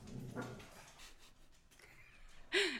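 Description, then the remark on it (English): A small dog whimpers and pants softly, then lets out a single sharp, high-pitched bark near the end, excited and protective at a grocery delivery woman. “We had a little dog. They just went wild because they're protecting their mama from the shipped grocery delivery lady.”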